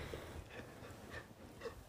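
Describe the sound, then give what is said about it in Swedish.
A dog whimpers softly in a couple of short, high-pitched bursts over a steady breathy background, fairly quiet, with no one talking. “Nu vill min vovve att vi ska gå härifrån, men det ska vi inte göra riktigt än, förstår du?”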